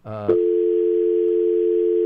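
A brief click and garble, then a steady, loud, continuous telephone dial tone on a radio call-in line after a caller did not hang up his phone, holding unbroken for about two seconds.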